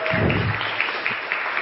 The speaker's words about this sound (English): We clap when I say my sobriety day. I've been sober 7 years.